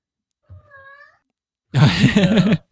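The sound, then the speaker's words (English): A soft, brief cat meow, then after a short pause a much louder, harsher drawn-out yowl, with no one talking. “this cat is throwing salt in your game, dude”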